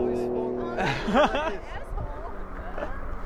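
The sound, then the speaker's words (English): A car rolls past on a street, its broad engine and tyre rumble swelling briefly mid-clip before easing off, with people's voices chattering over the traffic noise. “Okay, this car's coming.”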